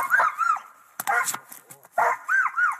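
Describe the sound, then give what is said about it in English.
Dogs bark and yip in quick clusters of high, arching yelps separated by brief pauses, moderately loud, with no talking. “because if you live, in the suburbs or rurally, you know that nothing makes your dogs answer back more quickly than the coyote howl.”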